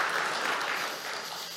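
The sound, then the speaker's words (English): Steady audience applause for the tech crew, a dense wash of many hands clapping at an even, fairly loud level that eases slightly toward the end of the short burst. “Can we give a round of applause for our tech guys too?”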